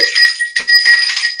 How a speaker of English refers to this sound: So I'm going to put this more towards like the cards here as much as I can. So let's ring in the bell for good energies.